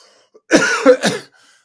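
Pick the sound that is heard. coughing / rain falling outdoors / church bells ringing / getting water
coughing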